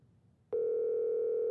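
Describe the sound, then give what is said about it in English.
After a brief stretch of low background murmur, a loud, steady telephone tone starts abruptly and holds unbroken to the end, like a phone line ringing through. No one speaks. “He would still answer his phone.”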